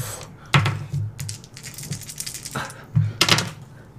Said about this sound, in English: Oh my god, dice. Just fall.